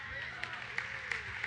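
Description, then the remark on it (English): An audience claps slowly and in unison, with four sharp, evenly spaced claps over a steady murmur of background noise. “Now you're clapping like you at the Masters.”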